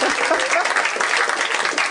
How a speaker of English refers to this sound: Now applaud